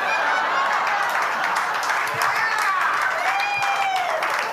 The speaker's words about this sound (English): Thank you for applauding my pain.